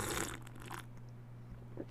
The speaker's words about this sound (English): I'm having a sip of tea, if you'll excuse me just a second as I sip away.